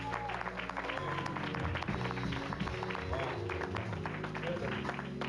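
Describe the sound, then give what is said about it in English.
A large audience applauds an orchestra, a dense, continuous wash of applause with sustained low musical tones underneath, fairly loud and unbroken from start to finish. “Give this orchestra a big round of applause.”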